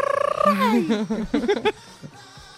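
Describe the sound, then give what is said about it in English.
A single voice lets out a loud mariachi-style yell, a high cry sliding downward into quick warbling, trilled bursts, then stopping abruptly after about two seconds. “Like, getting all the mariachi yells in here.”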